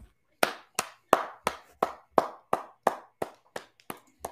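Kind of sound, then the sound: crowd, round of applause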